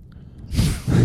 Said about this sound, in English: I can't tell who's breathing. It might be you. Stop breathing. It's throwing me off, man.